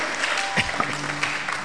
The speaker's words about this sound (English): If you're clapping, you can clap.